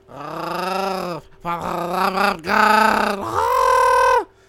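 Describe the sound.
A person makes a rolling, guttural throat sound in several sustained bursts, a strained groaning tone that wavers and rattles in pitch, fairly loud, with no words spoken.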